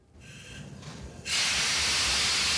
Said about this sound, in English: We were on a train heading out of the city by sunset.